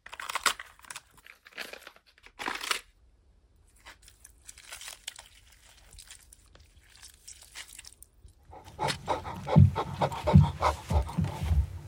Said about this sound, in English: And the strange truth is that actually what you're listening to is vegetables being snapped and chewed upon. But, you know, there you are thinking, wow, someone's face is being eaten.